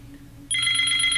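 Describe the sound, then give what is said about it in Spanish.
A telephone starts ringing abruptly after a quiet moment, a steady, bright electronic trill that continues without pause, fairly loud and close. “Un teléfono, es un teléfono.”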